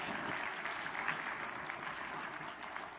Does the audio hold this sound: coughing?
no